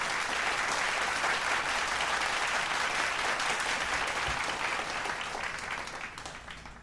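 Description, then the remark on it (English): An audience applauds steadily, a dense, even wash of many hands clapping at once that holds for several seconds before starting to thin slightly at the end. “Clap that up.”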